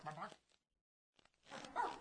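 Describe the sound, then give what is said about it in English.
A human voice imitates a dog barking in two close, loud bursts separated by a short silent pause, with a voiced, speech-like quality. “Bark, bark, bark, bark.”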